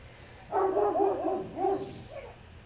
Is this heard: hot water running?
no